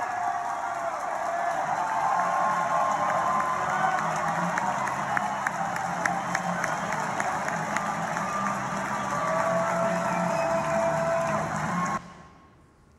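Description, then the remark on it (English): A huge stadium crowd cheers on their team in a steady, dense roar for about twelve seconds, filmed on a phone, with scattered claps and a few rising whistles over the din, before cutting off abruptly. “But a stadium full of people all united together, all one, cheering on their team.”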